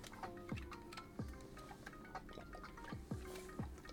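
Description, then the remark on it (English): Swallowing as someone drinks water: four distinct gulps spaced irregularly over a few seconds, with soft, steady lo-fi anime mix music underneath and no talking. “Let me just get a drink of water.”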